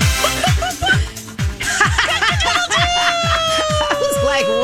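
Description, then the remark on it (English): On a My Talk 107.1 morning radio show, a person does a loud clucking chicken impression, rapid repeated bawks with rising squawky pitches, and a chuckle mixed in. “Hey, and if I need to act like a chicken.”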